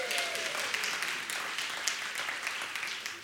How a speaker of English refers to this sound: You passed. Big round of applause.